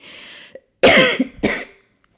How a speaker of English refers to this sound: Also, I apologize, dear listeners. I do have a bit of a cough. Clearly, I'm kind of talking all right. I'm not super nasally. I don't have a stuffy nose. I just have this tickle in the back of my throat. So occasionally I cough and I apologize.